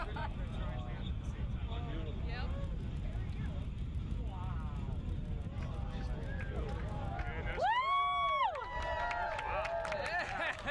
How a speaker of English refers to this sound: Did you hear the cheering?